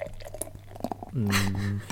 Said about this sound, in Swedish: Tjockt skum. Ja, det hördes. Jaha. Jag tycker det är en härlig ljudbild där någon häller upp en öl. Det är ju fan fint.